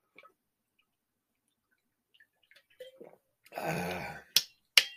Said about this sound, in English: I got a scratchy throat going on. I'm going to take a swig. If you got a drink, take one.